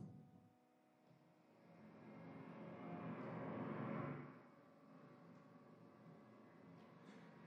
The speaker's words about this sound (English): And we have, and then we'll add some ocean right about now.